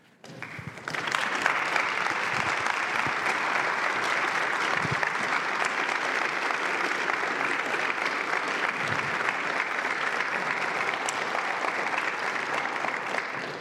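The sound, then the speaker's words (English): A church audience breaks into loud, steady applause after a brief moment of quiet, following the end of a prayer: a dense wash of clapping that holds evenly for over twelve seconds with no voices on top. “they do not applaud when I finish preaching.”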